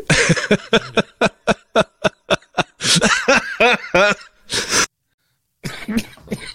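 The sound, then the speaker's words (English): A long run of rapid coughs from two people, a dozen or more short harsh bursts in quick succession, followed by throaty hacking and a brief pause before more coughing resumes. “God, we're both coughing up a storm over here.”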